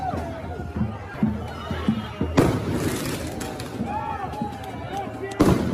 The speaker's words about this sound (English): They're just shooting fireworks at the windows and doors.